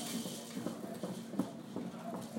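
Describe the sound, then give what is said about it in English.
Feet stomp on a floor in a quick, steady rhythm, about three or four thuds per second, moderately loud, with no voices, as a person holding onto a hoop stomps out their legs during an exercise. “Hold on to the hoop. Stomp out your legs.”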